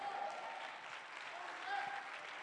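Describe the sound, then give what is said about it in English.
Steady audience applause fills the whole stretch, a dense wash of many hands clapping at an even loudness with no pause, a few faint voices mixed underneath. “I'm going to wait until there's a good clap in the house.”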